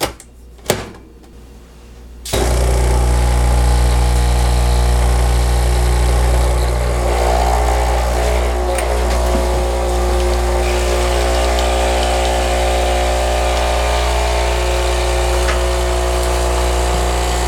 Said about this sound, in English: All right, so it's ready to go. I have my water filled up in there, right there in the tank. And I'm gonna put in the Bulletproof pod in this Nespresso machine.